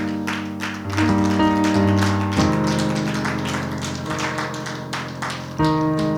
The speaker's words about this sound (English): It's good to have our visitors here. Amen. Why don't we give them a hand clap of praise?